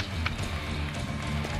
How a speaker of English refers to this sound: Who's clapping like this?